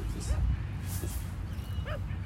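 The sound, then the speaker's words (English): A dog gives a couple of short, sharp barks, spaced apart, over steady low outdoor rumble and background noise in a large grassy park as the sun goes down. “This dog may be coming after me.”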